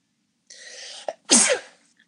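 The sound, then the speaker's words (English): A single sneeze, close and loud: a breathy drawn-in build-up followed by a sharp, explosive burst that quickly fades. No one speaks. “Not sneezing. God bless you.”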